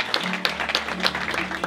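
An audience breaks into a round of applause for an attendee from Sierra Leone, with dense, steady clapping filling the whole moment, sharp overlapping claps over a low steady hum.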